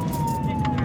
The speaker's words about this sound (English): We weren't far from the middle school, and for the first time all day, Officer Ruff put on his lights and sirens.